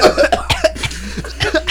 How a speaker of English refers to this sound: She started coughing.